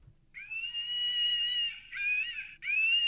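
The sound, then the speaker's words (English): A squeezed plush monkey dog toy lets out a shrill electronic scream, a sustained high-pitched wail in three loud bursts with brief breaks between them, no voices over it. “And then this one is a monkey, like a plush toy, but if you squeeze it, listen.”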